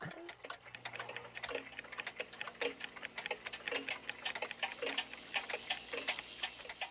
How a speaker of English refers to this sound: The film begins quietly with just the sounds of ticking clocks to establish Doc Brown's obsession with time. Yeah. Starts out with the It's very unsettling. Yes. And all the different, they're all ticking at different times.